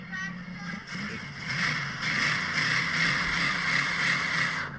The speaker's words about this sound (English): Oh, it's running. That does sound good. Idle nice and low, a little loopy. You hit it, it just like rocks the car a little.